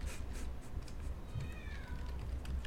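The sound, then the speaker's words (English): A 5-year-old girl imitates a cat's meow, a single short high-pitched call that slides downward in pitch, fairly faint against a steady low background rumble. “That was my 5-year-old niece saying meow or ow or something.”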